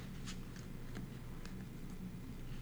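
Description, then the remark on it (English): Tarot cards being shuffled: a handful of soft, papery flicks and taps in an uneven rhythm, quiet, over a low steady hum with no voices. “Shuffling.”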